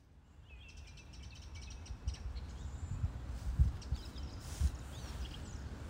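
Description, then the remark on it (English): Birds chirp and trill early in the morning in almost thick fog at Stansted Park, several thin high calls overlapping against a steady low rumble of wind or background noise, with occasional soft thumps. “Well, it's lovely bird song, and I'd like to tell you that it's a beautiful spring morning.”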